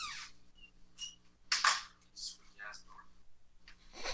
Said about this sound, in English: Squeaky ass door.